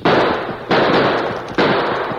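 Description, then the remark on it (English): Three loud gunshots, fired at two men running for their horses from a ranch cookhouse, ring out at uneven intervals, each a sharp crack followed by a long, noisy decay that trails into the next shot. No voices accompany them. “Stop or I'll fire.”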